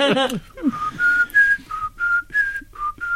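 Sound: person whistling a melody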